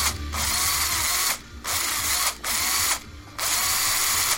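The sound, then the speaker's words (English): A power drill whirs loudly in several bursts, stopping briefly between runs as it drills a hole through the center of a nice-sized baked potato, with no talking. “Then you're going to take a drill, and you're going to drill a hole through the center.”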